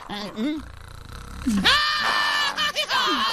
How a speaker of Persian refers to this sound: ناگهان با ترس و وحشت جیغ می کشد. از روی پومبا پایین می پرد و پومبا هم با وحشت از خواب می پرد و جیغ می کشد.